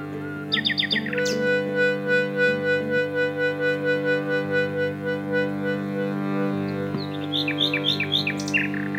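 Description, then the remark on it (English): A nightingale sings in bursts of rapid, high whistled trills, with a pause of quieter sustained tones between phrases before another flurry of sharp notes, fairly loud, over a steady low drone. “You describe something about the way the nightingale sings, which was about silence, that there is as much power to the silence in the nightingale song as there is to the notes that it sings”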